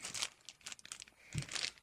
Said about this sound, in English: What do you got over there? Your little plastic bag. What do I got? I don't know, I just thought it was a plastic bag. It is just a plastic bag.